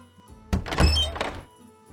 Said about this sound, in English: The king left the room and locked the door behind him.